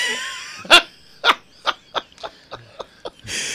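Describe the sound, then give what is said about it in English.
A small dog, Promise (nicknamed Poppy), a little dachshund kept as a business dog, barks in a quick series of about eight sharp yaps that come faster and slightly softer toward the end, with no one talking. “And one more employee we're working on is Promise, our little dachshund.”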